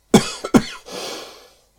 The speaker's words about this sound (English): Well, the coughing started. I honestly thought I might get through today's without it.